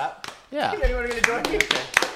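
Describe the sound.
A few sharp hand claps ring out at irregular intervals, mixed in with overlapping voices and what sounds like laughter.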